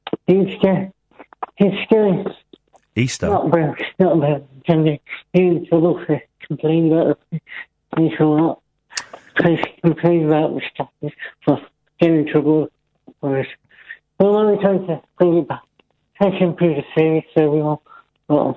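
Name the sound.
garbled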